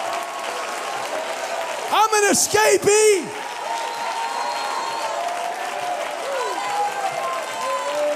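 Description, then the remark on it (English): A crowd claps steadily in praise and worship, a dense rustling wash of hands that holds an even level, while a voice briefly rises and calls out loudly over it early on. “I got to shake my tambourine. I got to clap my hands.”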